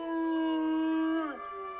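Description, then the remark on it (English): A dog howls together with a person howling in imitation, the person's voice being the higher-pitched one, both holding a long, steady tone before sliding down in pitch near the end. “And so then I started howling, and he started howling.”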